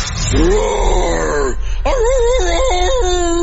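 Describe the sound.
A radio show host imitates a roar with his voice: two drawn-out, groaning bursts, the first swelling and fading, the second wavering up and down in pitch, loud and sustained.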